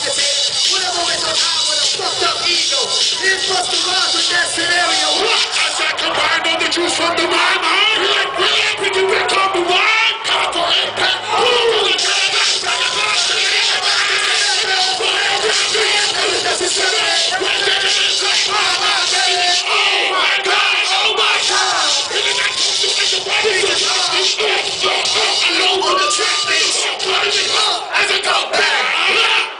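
A huge crowd cheers and yells nonstop at a concert, a dense, loud roar of many voices with scattered shouts and whoops rising above it for the whole stretch.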